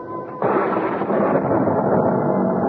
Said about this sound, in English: I was startled by an enormous thunderclap, followed by the wrenching split of wood. It brought me bolt upright and in one bound to the window, where, in the courtyard below, in the flash of the lightning, I could see that the oaken cap over the well